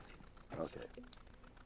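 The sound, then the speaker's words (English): Quick bursts of keyboard typing as someone types a quick note, a few soft clicks in close succession, with faint voice-like sounds murmuring underneath at low volume. “Hold on, just a little notation here, so I don't do it again.”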